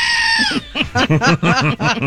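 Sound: goat screaming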